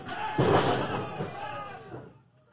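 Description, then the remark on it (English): A single loud, heavy thud of a wrestling lariat strike lands sharply, ringing out over a noisy, roaring arena crowd that swells and then fades. “Eats a huge lariat there.”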